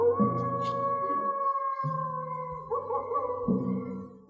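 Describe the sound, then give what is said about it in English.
A coyote howls in a long, sustained wail, the classic stock movie sound effect heard in a graveyard scene, loud, holding steady and overlapping for about four seconds with no talking. “they're walking through the graveyard and hear the most stock footage sounding coyote yell.”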